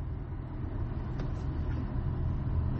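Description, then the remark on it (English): A steady low rumble of a car engine moving slowly in road traffic, heard from inside the vehicle, with a constant drone and no voices. “It was a very slow cutoff because I'm in traffic right now.”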